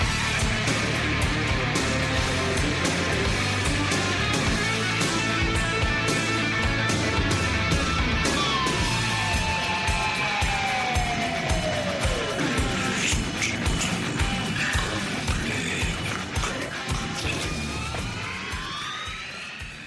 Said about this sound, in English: Hear that? Is that America cheering or a sausage patty sizzling to perfection?